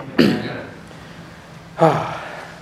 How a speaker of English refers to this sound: I took an antihistamine, I took my inhaler, trying to do something about this cough, so let's see how it goes.